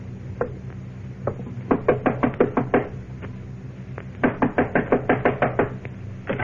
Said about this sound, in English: Knock on the door